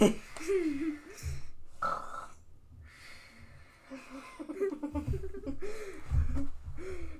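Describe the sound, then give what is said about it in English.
Someone fakes loud, rough snoring, the snorts and wheezy breaths repeatedly breaking down into giggling and laughter over several seconds. “You gotta get better at snoring without laughing, dude.”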